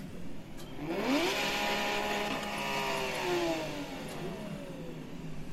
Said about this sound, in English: There is a gas pedal on the floor. There's a tachometer that tells you the RPM, and whichever car you choose, of course I've gone for the 911 GT3 RS.